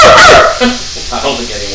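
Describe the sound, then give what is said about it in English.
A person imitates a dog with one loud, high-pitched yelping bark, followed by softer murmuring voices and laughter. “Why was your bark so high-pitched?”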